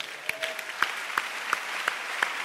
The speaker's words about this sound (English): Can you clap for Jesus?